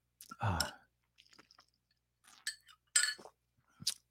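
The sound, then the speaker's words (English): Someone takes a sip from a glass, with a soft slurp, a few faint swallowing sounds and light clinks of the glass, and no talking. “Okay, let me take a quick sip.”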